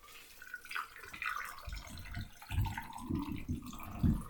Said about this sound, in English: So now that the shaker's open, I'm going to strain this cocktail over the fresh ice I already have in my glass.